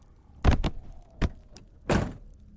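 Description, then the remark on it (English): A truck's front door slams shut with a sharp thud as a man's weight lands on the front seat, followed by quick mechanical clicks of the lock and another heavy clunk, with no voices. “As soon as the weight of his body hit the front seat, the door slammed shut and locked, caging him.”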